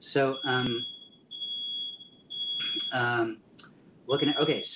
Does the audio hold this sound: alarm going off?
yes